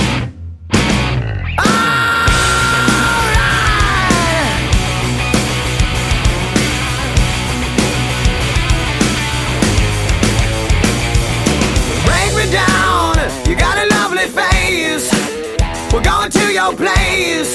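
A loud, dense hard rock track kicks in after a brief silent gap, with driving drums, heavy distorted guitars and an energetic vocal line running continuously throughout.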